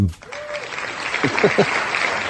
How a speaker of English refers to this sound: and that applause is meant in a thoroughly respectful way. And it actually is.